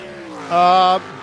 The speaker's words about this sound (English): Right, let's look at some times as these cars are coming round.